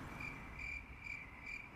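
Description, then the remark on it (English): Crickets chirp in a steady, repeating pulse, four bursts of high trilling over a soft low background hum, with no one speaking, edited in as a gag for an awkward silence. “I was going to say, I'm going to edit in some crickets there. I put my own in.”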